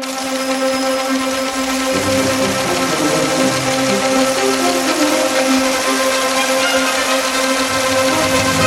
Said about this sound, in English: Is that the teletype I hear?